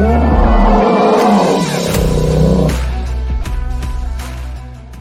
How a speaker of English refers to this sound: Oh, yes. Hear the passion in that bear's roar. Roar. Passion. Yes. Love it. Passion. Love it.